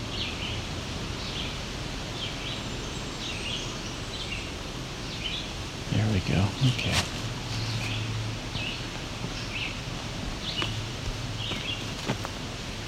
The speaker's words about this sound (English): Okay, that's what I heard before. Some kind of bird over here that is doing a very high-pitched whine at the end of its song. Hopefully this wind calms down enough. Give it a listen.